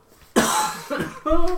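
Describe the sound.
A loud, close, rasping cough bursts out, followed by a smaller hack and a short voiced, throaty sound, all packed into under two seconds.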